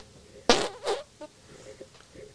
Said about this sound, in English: I haven't been able to do an armpit fart since, like, elementary school.